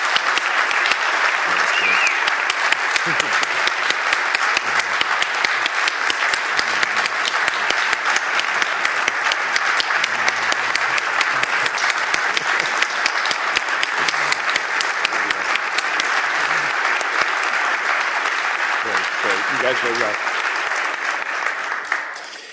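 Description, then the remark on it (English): Sustained audience applause for volunteers standing to be recognized fills the whole stretch, a dense, steady clatter of many hands clapping at full volume, continuous, with faint voices murmuring underneath before it tapers off at the very end. “You just stand so we can recognize you, give you a round of applause.”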